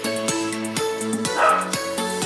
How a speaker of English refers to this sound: Ignore Apollo barking in the background.